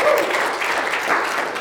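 A crowd applauds steadily, dense overlapping claps forming a loud, even wash of sound with no voices standing out.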